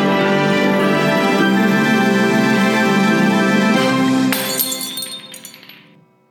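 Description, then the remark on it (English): Glasses clink together in a toast with a bright, ringing chime that lingers over a sustained tonal wash, then a sharper final clink rings out and fades away. No one speaks. “As we end every episode, we raise a glass and we say, Zootuapa! Cheers!”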